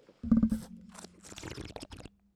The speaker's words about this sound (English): I'm sorry, I had to take a sip of water.